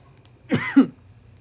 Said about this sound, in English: Swear to God, this time is not COVID. I was saying, I need to stop coughing in your ears. Because listening back to that shit, it's not fun. So I apologize.